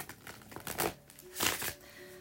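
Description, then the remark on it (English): A deck of tarot cards being shuffled, with two soft riffling bursts of papery rustle separated by brief pauses, fairly quiet, with no voices. “All right, let me just do a few shuffles and we can go ahead and get started.”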